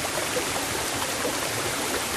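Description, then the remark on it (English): A small waterfall in the jungle near Akaka Falls, on the east coast of the Big Island of Hawaii, spills steadily into a stream beneath a wooden bridge, producing a dense, continuous rushing hiss with no pauses, fairly loud, with no voices present. “you'll find a much smaller cascade feeding a stream beneath a wooden bridge”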